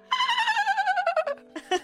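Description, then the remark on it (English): A woman's voice mimics a dolphin with a high, warbling squeal that pulses rapidly and slides downward in pitch, then breaks into a few short chirping bursts. “her only strong point that she could offer me was this dolphin noise.”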